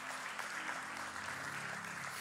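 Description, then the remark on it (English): An audience claps steadily in thanks to God, dense overlapping hand claps forming a continuous wash of applause that holds an even level throughout, with no voices standing out. “We can clap right now.”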